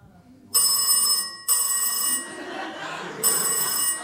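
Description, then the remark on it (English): A telephone rings loudly in repeated bursts, a bright trilling bell starting and stopping in three rings with brief gaps between them. “I'm gonna get that real quick. Very unprofessional. Hello?”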